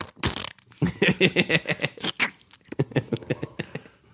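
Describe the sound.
A voice imitates a squirting mustard bottle: a sharp hissy burst, then a long run of wet, rapid sputtering pulses, a brief pause, and another spluttering stretch.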